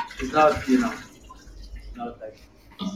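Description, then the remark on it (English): A short pour of water into a glass, fairly loud for about a second, followed by quieter trickles and small splashes, with faint voices in the background. “That was not a bathroom. That was a glass of water. It sounded like a water pour.”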